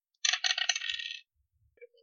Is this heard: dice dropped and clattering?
yes